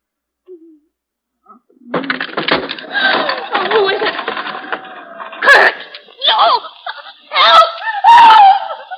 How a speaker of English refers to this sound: What made you scream, Mrs. Sander?